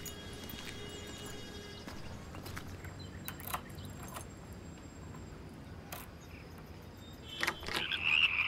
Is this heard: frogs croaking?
yes